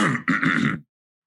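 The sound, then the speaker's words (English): A person clears their throat with two or three rough, guttural rasps in quick succession, fairly loud, then silence. “I clear my throat a lot like this.”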